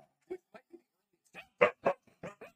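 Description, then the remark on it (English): A dog barks in a quick series of short, sharp yelps, a few softer whimpering ones first and then louder barks in a rapid cluster. “Sorry, we're currently having technical difficulties, but the technology is... Dog.”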